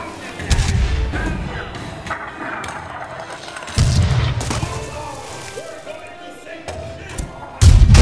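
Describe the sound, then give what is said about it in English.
Heavy cannon fire booms out in several deep, loud blasts, spaced a few seconds apart, each with a rumbling low-end thud and a brief rolling decay amid background commotion, heard from aboard a boat. “Man, those cannons sound realistic today.”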